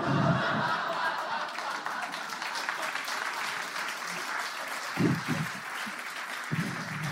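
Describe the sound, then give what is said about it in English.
A crowd claps steadily for several seconds, a dense, sustained wash of applause with a few brief chuckles and murmurs mixed in. “They give an extended applause break for the idea of trying your best.”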